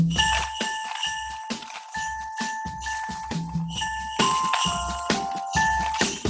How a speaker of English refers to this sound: It's got jingle bells in it. We'll just listen to a little bit of it.